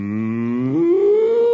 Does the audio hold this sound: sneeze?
no